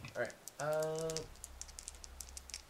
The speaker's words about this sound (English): Just trying to get a dice rolling in the camera.